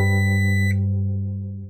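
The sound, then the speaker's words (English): A harsh, loud buzz from an old-school alarm clock drones steadily, its rasping harmonic tone holding without a break before the upper edge fades and it tapers off toward the end. “From the harsh buzz of an old-school alarm clock, to the grinding of a blender, to the beep of an oven when it's done preheating.”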